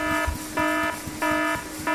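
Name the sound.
alarm buzzing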